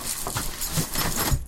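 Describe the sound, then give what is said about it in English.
A dog walking in, knocking everything over, and walking out: quick, irregular footfalls and scuffling, broken by a few soft thumps and knocks as things get bumped, at moderate loudness with no talking. “Yeah, the just dog walked just in. Sort of walked in, knocked everything over and walked very loudly again.”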